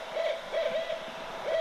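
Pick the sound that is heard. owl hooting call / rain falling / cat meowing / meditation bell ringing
owl hooting call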